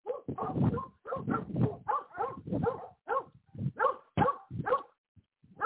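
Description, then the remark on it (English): Neighborhood dogs bark loudly and repeatedly at a person walking down the street, in a rapid, overlapping string of sharp yaps and woofs, with a couple of brief pauses and faint whimpers near the end. “I've been walking down the street for 13 years, and they still constantly bark.”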